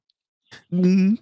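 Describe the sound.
A person vocally imitates a single exaggerated hiccup: a quick breathy catch, then a loud, voiced yelp rising in pitch, with no other sounds around it.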